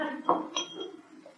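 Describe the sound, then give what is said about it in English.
A couple of quick glassy clinks and a rattle as a watch being tested as waterproof is lifted out of a drinking glass, fairly soft. “Yes, well, I'd better take it out of the glass.”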